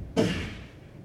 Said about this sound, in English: And then you hear a door slam open.